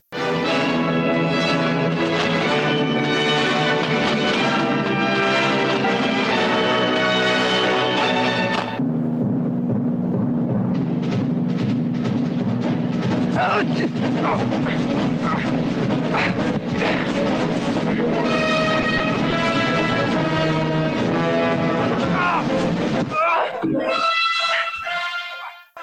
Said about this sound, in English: So this is like Star Trek fight music. It's very like old school Hollywood, but I liked it.